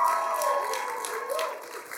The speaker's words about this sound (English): Why don't we give Jesus a round of applause? How about that?